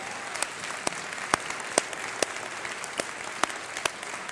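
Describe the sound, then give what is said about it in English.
An audience at a morning service claps for the choir and orchestra after their music, a dense wash of many hands with a few sharper individual claps popping out at irregular intervals. No one speaks over it. “You don't do it for the applause.”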